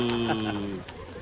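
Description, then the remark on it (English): Radio announcer Don Wilson imitates a cow in the Western radio drama Buck Benny Rides Again, giving one drawn-out, low moo that lasts under a second, fairly loud, then trails off. “It was Don Wilson, folks, just an old cow ham.”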